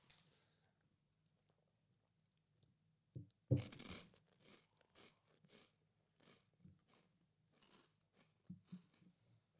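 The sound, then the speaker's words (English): After a quiet start and a faint brief sip, a loud close crunch of biting into crisps gives way to a steady run of chewing crunches, with no talking. “Right, I'm going for it. I'm going to take a sip first.”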